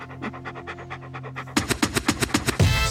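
A dog pants rapidly and rhythmically, starting softer over a faint steady hum and then growing louder with quicker, breathier huffs near the end.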